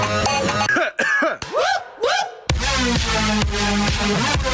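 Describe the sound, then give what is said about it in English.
A voice imitates a whooping cough with a series of harsh coughs broken by rising, hooting whoops, then runs into a louder, denser burst of rough coughing. “Like, when I think of whooping cough, like...”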